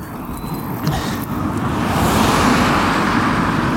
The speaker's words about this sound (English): Sorry, there's a few cars.